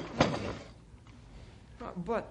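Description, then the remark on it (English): A desk drawer holding papers slides open with a short scraping rattle, followed by a quiet pause and then a brief murmur of a voice. “The papers are still here in my desk drawer where I put them after I talked to you.”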